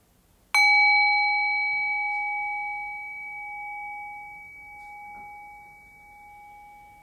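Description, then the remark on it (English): A single meditation bell is struck once, ringing out with a clear sustained tone that slowly fades over several seconds into quiet. “And so the invitation there is to again rest your awareness on the fade of the bell. As the bell fades, allow the bell to bring your awareness into silence.”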